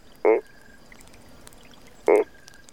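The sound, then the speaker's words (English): Frogs croaking in a nearby creek at dusk, two short, loud croaks spaced almost two seconds apart, each a quick throaty burst standing out against a quiet, faintly hissing outdoor background. “I think I can hear some frogs talking in a nearby creek.”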